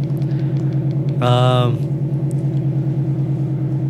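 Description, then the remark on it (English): A car's low, steady engine rumble hums outside throughout, with a brief, louder tonal burst cutting in about a third of the way through before the drone carries on. “Probably waiting for the car to leave.”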